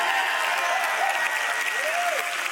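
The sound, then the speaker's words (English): A light, scattered round of clapping with many overlapping hand claps forming a steady hiss of applause, fairly loud throughout, with a faint whistle-like tone rising and falling near the end. “So smattering of applause.”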